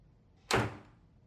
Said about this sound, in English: You gonna shut the door?